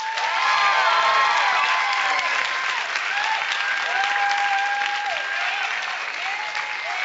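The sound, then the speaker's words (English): Sustained applause from a sizable comedy-show audience voting for cake over pie, steady and loud throughout, with a few whoops and faint voices rising above the clapping. “applause. How many people like cake more than pie?”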